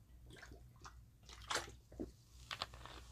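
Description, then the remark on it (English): Wet sipping and gulping as someone drinks soda from a can in their room, with a few sharp slurps and swallows spread over a few seconds and no talking. “I'm going to drink some of this soda.”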